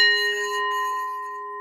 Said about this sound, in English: Wind chimes. Wind chimes are good for clearing energy and bringing in good spirits. Listen to the spirits of the wind.